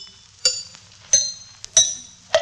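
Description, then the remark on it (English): A small hammer taps lightly on a tooth four times at a steady, unhurried pace, testing for an ailing tooth by its sound; each strike is a sharp clink with a bright, briefly ringing high tone. No one speaks. “The book says one can detect an ailing tooth by the dull sound it makes when struck lightly by a hammer.”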